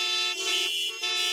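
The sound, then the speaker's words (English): A car horn blares in traffic in a sustained, loud honk lasting over a second, its bright harmonic tone wavering slightly with two brief dips in intensity, with no voices present. “Are we stuck in traffic?”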